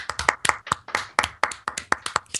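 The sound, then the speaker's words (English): A soft, polite golf clap for the TV show The Flash, about a dozen light claps in a loose, slightly uneven rhythm, fairly quiet, with no talking. “Can we just have a round of a golf clap for The Flash?”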